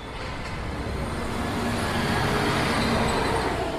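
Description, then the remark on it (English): Steady roar of street traffic with the deep, droning engine rumble of buses pulling out of a bus station exit at 10 p.m., recorded from a living room window across from the exit, a continuous wash of road noise with no voices. “This is a recording from his living room window at 10 p.m.”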